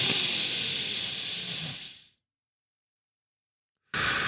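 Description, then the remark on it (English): A slow, deep breath during a breathing exercise: a long, airy exhale that gradually fades into almost two seconds of silence before the next breath starts. No one speaks. “There is an app on my Apple Watch that occasionally will remind me to do a breathing exercise.”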